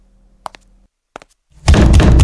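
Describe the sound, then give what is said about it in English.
A locked door handle rattles in two brief clicking bursts, fairly sharp, before a sudden loud wash of noise swells up and fills the rest of the moment. “The door is locked. Yeah, try the door handle.”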